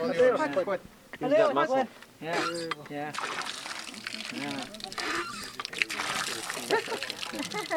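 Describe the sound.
Voices talk briefly before water from a pump starts gushing and splashing, a steady, close rushing spatter that continues beneath more conversation.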